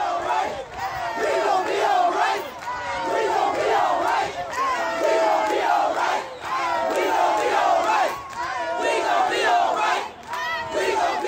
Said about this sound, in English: protesters in Cleveland chanted the song's refrain after an altercation that led police to using pepper spray on the crowd.